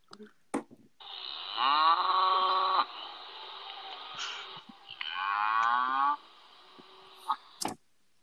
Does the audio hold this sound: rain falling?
no